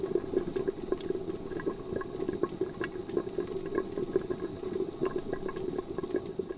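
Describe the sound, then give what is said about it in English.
Water pours steadily into a cooking pot of potatoes and onions, enough for them to cook tender, a continuous splashing and gurgling rush that stays fairly loud the whole time, with no voices. “Add enough water for those potatoes and onions to cook tender.”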